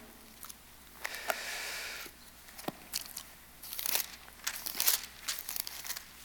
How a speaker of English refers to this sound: I love hearing pages turn. That's refreshing.